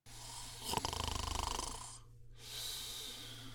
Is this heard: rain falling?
no